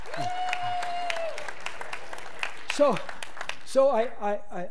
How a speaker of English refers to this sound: No, I don't need any clapping.